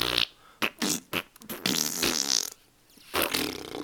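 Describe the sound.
A voice blows wet mouth raspberries imitating farts, a typical comedy raspberry made as a fart sound for Ubisoft: several short sputtering bursts, then a longer buzzing one and a final blast, fairly loud.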